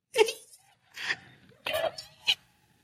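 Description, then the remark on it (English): A person lets out four breathy, sneeze-like vocal bursts, unevenly spaced over a few seconds, each moderately loud with a strained, voiced edge, the last one short and abrupt. “Okay, it sounds like you sneeze while thinking of your dad”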